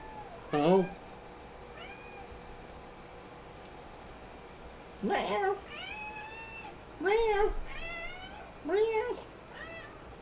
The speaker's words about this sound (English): Meow. Meow. Meow. Meow. Wow, you're very talkative down there, huh, buddy? That's Nathan. What a talkative little dude.